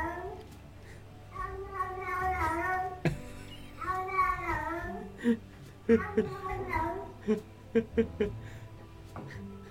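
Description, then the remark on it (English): A cat lets out a string of strange, warbling, drawn-out yowls, rising and falling in pitch, followed by shorter choppy chirps and sharp clicks near the end, fairly loud. “I love that cat noise. It's so weird.”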